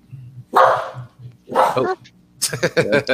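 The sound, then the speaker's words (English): A female pet dog barks twice, loud, each bark a harsh, drawn-out burst, and then a man starts talking right after over a low background hum. “That's been my dog freaking lately, man.”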